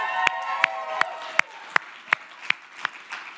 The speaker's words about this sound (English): Come on, you can clap.